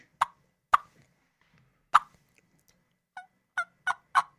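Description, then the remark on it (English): Soft, nasal turkey hen yelps in a tree call, likely made by a person with a turkey call: three spaced notes, then a quicker run of four, clear with no talking. “That's a yelp. That's a tree call. He's doing a tree call now.”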